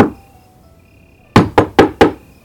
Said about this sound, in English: It was a chilly spring night in the city of Roseville, with temperatures hovering in the mid-40s. At around 5 a.m. on March 8, 2008, Michelle and Paul White were startled out of their sleep by someone knocking loudly on their front door.